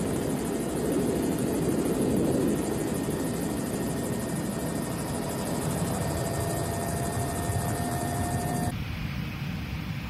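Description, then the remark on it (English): A helicopter roars steadily, its rotor producing a dense, continuous thrum with a constant engine whine above it, loud throughout until the sound cuts abruptly near the end. No one speaks. “This helicopter pilot has some incredible aim.”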